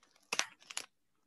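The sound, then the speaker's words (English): Very thick gift paper tears and crinkles in two loud, crunchy bursts, the second a little softer, after a quiet rustle, as a gift, an Animal Dominoes card game, is unwrapped, then falls silent. No one speaks. “And it's very thick paper.”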